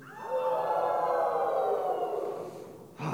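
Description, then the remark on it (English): An audience howls together on a count of three in one long, sustained, wavering cry lasting about three seconds, loud, fading slightly before cutting off abruptly. “We're going to howl really, really quick, all right?”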